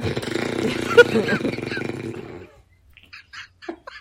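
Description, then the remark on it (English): A voice makes a long, raspy, buzzing fart noise with the throat, sputtering steadily for a couple of seconds, then stops; a few brief squeaky vocal sounds follow after a short silence. “Someone made a fart noise with their throat. Went on forever.”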